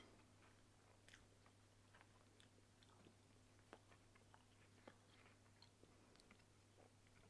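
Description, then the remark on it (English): Chewing of soggy Cap'n Crunch Fruity Bits cereal, with irregular wet crunches and mouth clicks repeating over a steady low hum, no talking. “It's the fruity, pebbly things that actually keep it a 9. The Cap'n Crunch itself, no crunch.”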